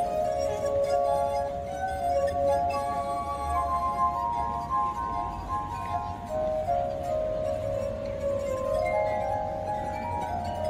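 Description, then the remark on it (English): Sustained ringing tones from rubbed water glasses, several pure pitches overlapping and shifting slowly into a gentle, shimmering melody, steady and fairly loud throughout with no voices. “This is the sound of water glasses.”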